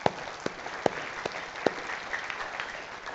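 An audience applauds for at least two baptisms that day, with a few sharp, distinct claps standing out over a steady wash of many hands clapping throughout. No one speaks.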